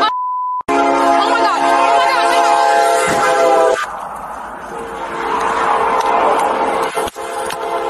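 A brief electronic beep, then a loud train horn blares steadily for about three seconds as a train hits a police car, giving way to a heavy, rushing rumble with a sharp knock near the end.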